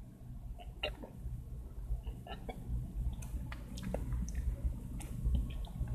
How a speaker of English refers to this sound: So I'm going to take some sips.